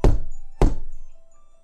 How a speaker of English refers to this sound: And then they heard three knocks.